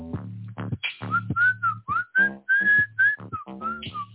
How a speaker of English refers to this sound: he tries to whistle, but it's just a lark. He's got no rhythm. He's got no soul.